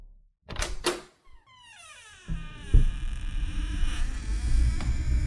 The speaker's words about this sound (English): The sound of an open door.